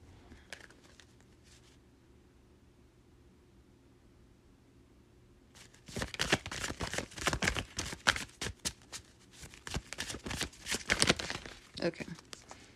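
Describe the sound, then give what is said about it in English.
After several seconds of near silence with a low hum, tarot cards are shuffled: a dense flurry of quick papery flicks and slaps lasting about six seconds. “Let me just shuffle some cards.”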